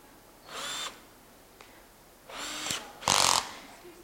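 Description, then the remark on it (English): A power drill whirs in three short bursts, the last the loudest, with brief quiet gaps between them, and there is no talking. “I like drills, drills are fun.”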